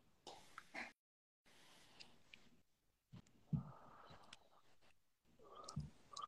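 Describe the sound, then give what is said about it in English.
A few short, rough coughs come in separate bursts spread across a few seconds, fairly quiet and muffled, with brief pauses and soft background noise between them. “My bad, my mouth is cough. That's just the gas, my fault.”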